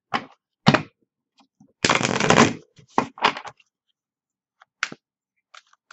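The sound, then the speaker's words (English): Shuffling of a deck of Nature Spirit cards by Denise Lynn: a few sharp papery flicks, then a dense rustling riffle lasting under a second, followed by scattered snaps and taps with quiet gaps between. “So let's do a shuffle here.”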